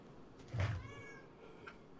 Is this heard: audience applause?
no